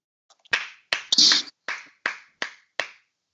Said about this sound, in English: Oh, ladies and gentlemen, it is officially week one of college football. It is not week zero anymore. It is officially week one. Clap it up real quick.